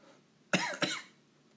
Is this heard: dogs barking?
no